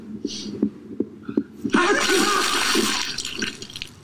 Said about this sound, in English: Oh no. He's gonna sneeze.